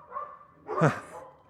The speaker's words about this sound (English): Well, I had no idea there were so many dogs in the neighborhood. Oh, boy, and they look hungry.